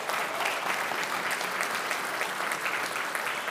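A crowd applauds steadily, a dense, even wash of many hands clapping at once with no pauses, holding a constant loudness throughout the few seconds.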